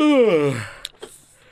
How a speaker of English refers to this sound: I'm genuinely yawning right now.